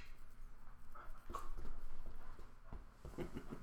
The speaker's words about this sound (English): Your poor dog wants to get up on the couch. Oh, be nice to him. He likes you. I know. You come on, Riley.